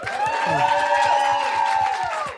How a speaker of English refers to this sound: All right. Big round of applause for everyone.